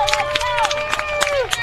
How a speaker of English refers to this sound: A socially distanced capacity crowd, we'll call it here, but a nice crowd here of folks. They're loud, that's for sure.